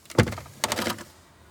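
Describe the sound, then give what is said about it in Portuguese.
A car glove compartment is opened: a sharp latch click, then a short plastic clatter as the lid swings down. Fairly quiet, with no voices. “Deixe-me ver aqui uma coisa no porta-luvas.”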